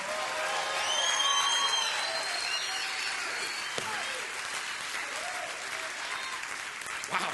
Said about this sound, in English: Anybody still cheering out there?